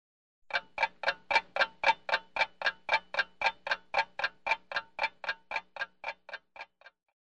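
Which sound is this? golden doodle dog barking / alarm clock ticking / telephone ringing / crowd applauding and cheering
alarm clock ticking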